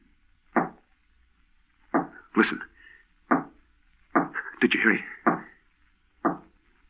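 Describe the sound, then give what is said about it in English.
Single sharp knocks on the door of a third-floor studio, spaced a second or more apart and irregular, with a voice speaking briefly between them. “You heard the knocking on the door, but you see there's no one here.”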